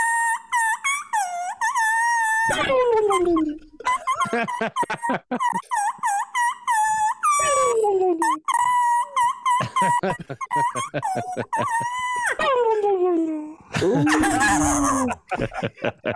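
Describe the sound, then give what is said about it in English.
A diaphragm game call squeals out a rendition of Jingle Bells, its reedy, wavering notes gliding up and down in a loud, nearly continuous run of short phrases. “That was more turkey call than elk call, though.”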